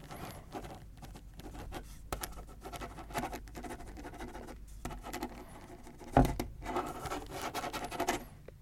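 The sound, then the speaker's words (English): A pen scratches steadily across paper in short, quick strokes, fairly quiet, with a brief louder tap partway through and no voices. “writing in great detail about that one thing you did that one time that was really, really cool, in my opinion.”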